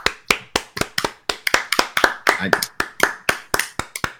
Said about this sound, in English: Let's applaud that guy for winning.